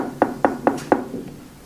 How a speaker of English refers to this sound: When Rav Ovadia, when he's in his 80s, right here across the street, an old woman, Iraqi, knocked on a door.